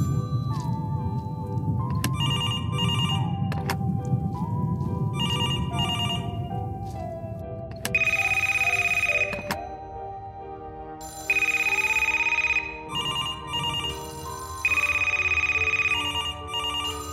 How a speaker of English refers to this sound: Ooh, I hear ringing. Of course. It's an old phone shop. How strange.